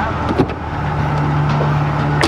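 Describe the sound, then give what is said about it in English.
An Oldsmobile car engine drones steadily, a low sustained hum with road rumble, punctuated by a couple of brief knocks or thumps. “We'll see how long he lasts under the wheels.”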